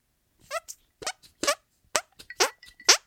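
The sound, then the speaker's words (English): A string of about seven short, squelchy hand fart noises in an uneven rhythm, each with a wobbling, bending pitch, fairly loud with no talking. “Oh, is that the artificial fart under the arm? That's actually using the hands as musical mic.”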